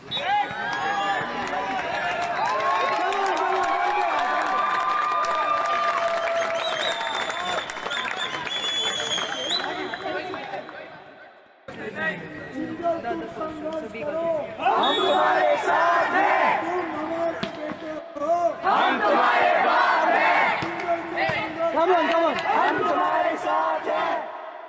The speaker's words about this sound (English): The atmosphere was really loud. Supporters of both teams had crowded around the court, and we were constantly cheering after every point.